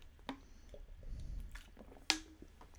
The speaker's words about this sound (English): just taking a gulp.